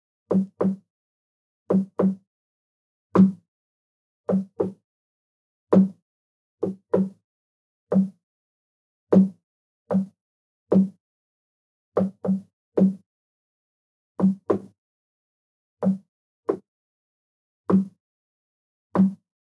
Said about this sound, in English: That night, before the storm abated, it struck again, hard. I could hear the same weather alarms, and finally the banging on the walls again. It seemed different that night, though. Almost defeated.